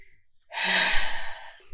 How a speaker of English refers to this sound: I'm breathing hard because they're about to come for us.